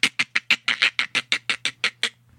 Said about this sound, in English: She nervously points out, and you can see, just at the edge of your vision, that there's these very large ripples indicating a very large animal is right underneath the waves. And you can hear these chittering sounds, these...